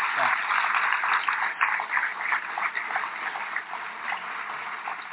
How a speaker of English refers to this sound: Please join me in giving them a warm round of applause for all of this.